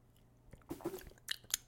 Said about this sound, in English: I'm mainly getting cinnamon. It's giving cinnamon. The secret ingredient? Yeah. Cinnamon. Yeah. But it smells like a cinnamon. Like I'm at the airport walking past a Cinnabon. Sips? Ooh, sips.